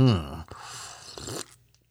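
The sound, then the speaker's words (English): A loud, low, rumbling belch bursts out first, followed by about a second of noisy, airy slurping of coffee that cuts off abruptly and fades to silence. “Now tell me, do you listen to any other podcast where the host out loud belches and loudly slurps coffee while they're doing it?”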